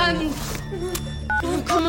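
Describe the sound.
A landline phone being dialed to call 911 about a fall at a farmhouse on the Simpson Falls Road: a single short keypad tone beeps midway, heard beneath ongoing voices and background sound.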